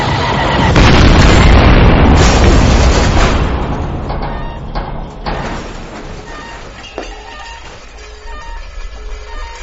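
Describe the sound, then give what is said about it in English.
A heavy sci-fi weapon blast fired at a spacecraft erupts into a loud, roaring explosion with crackling bursts, then rumbles and slowly fades into a low, lingering debris hiss. “One more blast like that, and we'll be as likely to survive as a popular character in Game of Thrones.”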